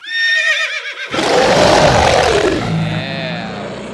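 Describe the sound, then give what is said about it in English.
A high, quavering horse whinny opens, then a loud, rough animal roar bursts in and rumbles on, layered with other beastly growls and cries and birds chirping. Loud, with no talking. “I just imagined a fat bearded guy fucking a horse. That's what that sounded like. There was a lot of extra animals in there.”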